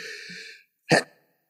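A single sneeze: a drawn-out, breathy voiced lead-in, a brief pause, then one sharp explosive burst that cuts off quickly. No one is talking.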